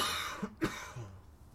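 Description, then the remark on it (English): A single short, sharp cough, preceded by a faint throaty catch, with quiet background noise and no talking around it. “Just edit out the cough.”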